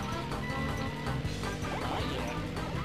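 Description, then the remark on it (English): A few sharp, slapping smacks, Wario's taunt of slapping his butt cheeks, ring out over busy, upbeat video game music and sound effects, a cartoonish taunt noise loud in a dense mix. “Yep, that's Wario. I was like his little taunt thing where he slaps his butt cheeks.”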